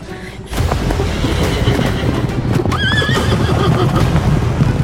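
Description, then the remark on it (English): Three giant horses in a stable take off charging at full speed, with a dense, continuous rumble of pounding hooves that starts abruptly and stays loud, while a shrill, wavering whinny cuts through near the middle. “Suddenly, three giant horses to our right took off, charging directly towards us at full speed.”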